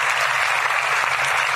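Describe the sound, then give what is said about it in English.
Sustained audience applause at Marshall, where rockets are developed, a dense, steady wash of many hands clapping at an even loudness throughout, with no voices standing out. “Give yourselves a round of applause for persevering here at Marshall and developing the rockets of the future.”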